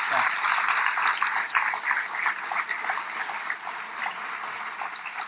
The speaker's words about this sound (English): Please join me in giving them a warm round of applause for all of this.